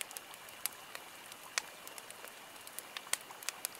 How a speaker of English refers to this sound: Have you ever heard a fire sound so good before?